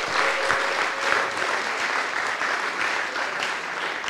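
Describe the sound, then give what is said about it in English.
A crowd applauds and cheers for North Hull, dense clapping filling the whole stretch at a loud, even level, with scattered whoops and a brief high whistle riding on top. “Okay, and then come on, big cheer for North Hull.”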